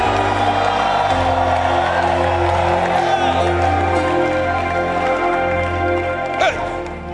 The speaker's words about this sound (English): come on, clap and shout for Jesus